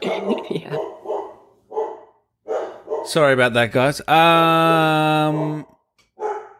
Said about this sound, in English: Oh, Jesus. The dog barking.